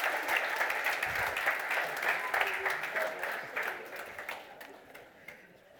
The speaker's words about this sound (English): Round of applause for our volunteers. Thank you.